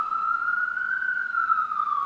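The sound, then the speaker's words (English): An ambulance siren wails steadily, its tone rising slowly and then falling as it passes, fairly loud and continuous, with no voices over it. “That ambulance go.”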